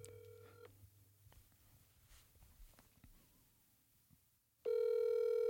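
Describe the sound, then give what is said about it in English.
A phone call to a father rings out with a loud electronic ringback tone, ending one ring at the start, then a few seconds of quiet hiss before the next ring begins, steady. “Hopefully he picks up.”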